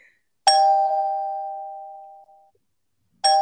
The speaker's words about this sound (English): Oh, it's supposed to be a doorbell. It doesn't really sound like one, does it? That's an adorable little poop sound you just tried to make.